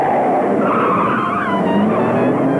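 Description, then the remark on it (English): Loud, continuous tire squeal and skidding from racing cars on the downhill stretch of a race course, with engines roaring throughout and a high screech that rises and bends over the noisy mix. “Now they're on the downhill stretch of the course, which is the last portion of the course before we go back into the start and finish straight.”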